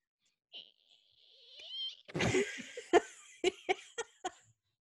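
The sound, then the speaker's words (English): A voice mimics a balloon being twisted: a thin, high rubbery squeak, then a harsh burst and a run of four or five sharp squeaky pulses. Giggly, breathy sounds blend into the squeaks. “Oh, twisting a balloon. What? Does that make a noise? Yes.”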